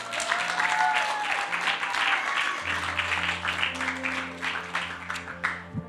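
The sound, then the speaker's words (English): An audience bursts into sustained applause for a young man who did a good job, a dense wash of many hands clapping at steady loudness for several seconds, with a low hum running underneath and a few voices mixed in. “Give that young man a big hand of applause.”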